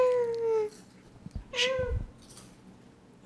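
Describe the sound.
A young child imitates a cat during snack time with a long, drawn-out meow, then a second shorter, rising meow, with faint background clatter and a brief voice at the end.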